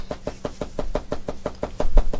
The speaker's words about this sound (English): I go, knock, knock.